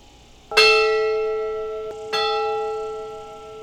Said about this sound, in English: Yeah, that's the Camp Kitaki bell. It's on top of our dining hall, and right now it's evening time at camp, and we use the bell to signal the end of a game or the start to a game or things